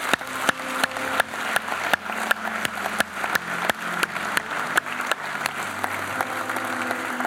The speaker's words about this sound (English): Somebody give the Lord a clap offering, come on.